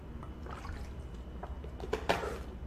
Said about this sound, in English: Just excuse me while I have a bottle of water here.